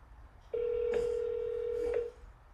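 telephone dialing and ringing

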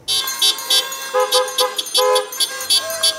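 car horns honking

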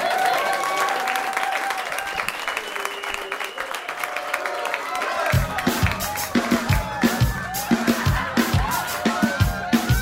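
audience cheering

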